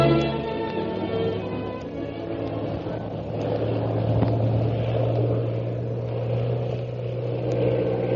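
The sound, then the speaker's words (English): A propeller plane engine drones loudly and steadily, its low throbbing hum swelling slightly midway through, with no voices, as the pilot stunts the plane to escape a pursuing plane. “Meanwhile, Shanghai Lil continues her attempt to escape her pursuer by stunting her plane.”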